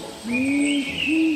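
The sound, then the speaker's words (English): A powerful owl, the largest hawk owl species, found in Australasia, gives a deep two-note hooting call, one long, steady hoot followed by a shorter one, heard clearly over a faint, high background hum. “The powerful owl is the largest species of what's called a hawk owl group found in Australasia.”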